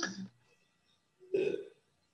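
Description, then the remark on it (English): A person clears their throat twice: a short rough rasp, then after a brief pause a louder, longer guttural rumble. No words are spoken. “Well, once again, let me clear my throat for this.”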